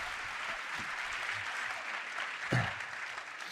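Steady audience applause, a dense wash of many hands clapping at an even level, with one slightly louder burst midway and no talking over it.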